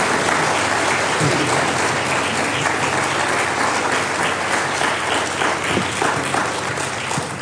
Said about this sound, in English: But you are required to give him a special round of applause at this time as we welcome him to our pulpit.